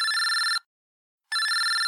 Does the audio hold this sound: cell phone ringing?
yes